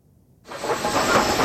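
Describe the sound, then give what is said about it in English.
After a brief near-silence, Union Pacific steam locomotive number 4014, one of the biggest steam locomotives ever built, bursts into a loud, steady hiss of escaping steam as it pulls out of Cheyenne, Wyoming. The hiss continues unbroken to the end, with no voices. “One of the biggest steam locomotives ever built, back on the tracks, rumbling west under its own steam.”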